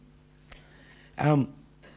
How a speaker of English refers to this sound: This is the part of the church service where everyone coughs. Yeah. There we go. Blended right in.